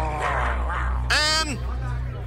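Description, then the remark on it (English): A person imitates clucking chickens with their voice in a short series of clucks, ending in one loud, drawn-out squawk over a low steady hum, as part of the intro of The Daily Mix Show on 99.9 KISW radio. “Chickens. They're a-clucking. Other animals.”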